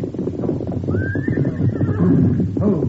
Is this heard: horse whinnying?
yes